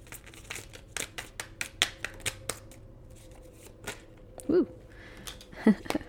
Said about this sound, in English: When I shuffle, I like to let random cards come out. I wonder if you'll hear the ASMR of these, this deck.